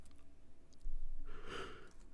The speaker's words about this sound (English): Ooh, again, I apologize for my yawn. I'm so tired. I've worked all night.